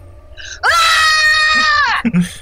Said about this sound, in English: What was that? Oh, it was a scream.